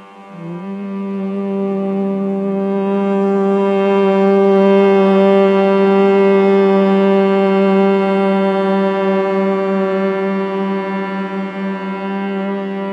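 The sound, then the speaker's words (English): A single voice hums one long, steady low tone for about twelve seconds during a guided crown chakra meditation, rich in overtones and holding a constant pitch from start to finish, fairly loud with no words. “Let's hum one time.”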